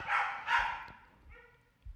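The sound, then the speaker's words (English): Two quick, sharp dog barks in succession, followed by a brief higher-pitched whine, all fairly quiet and with no one talking, as the dogs react to someone banging on the door. “Someone's been banging on the door all morning, so the dogs are going crazy”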